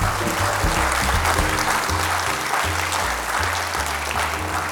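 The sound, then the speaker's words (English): A live audience at the National Constitution Center in Philadelphia claps steadily, a dense, sustained wash of applause with no pauses, continuing for several seconds without any talking over it. “Friends, let's have a round of applause for our We the People audience.”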